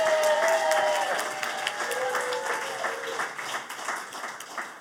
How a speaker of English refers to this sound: One more round of applause for the staff of Black Kettle. Thank you so much.